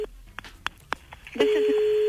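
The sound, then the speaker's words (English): A few quick keypad beeps, then a steady electronic phone tone starts and holds, the ring heard on the caller's end of an outgoing call to a radio listener, clear over faint background murmur. “So if your phone's about to ring now, just play along.”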